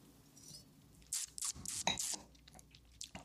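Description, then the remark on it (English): A few wet sipping and slurping sounds from someone drinking wine, clustered over about a second, then quiet mouth noises and a soft swallow. No one speaks. “I'm going to take another sip because I'm trying to think about all the flavors.”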